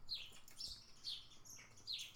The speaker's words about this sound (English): A lot of bird activity outside my window.